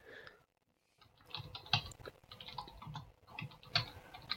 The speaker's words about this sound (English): I'll put it up on the screen. I can hear the typing. Yeah. Yeah, I can hear him typing away. Yes. Like a madman.